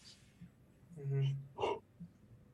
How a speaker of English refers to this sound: God damn it, I have the yawns. I'm not tired.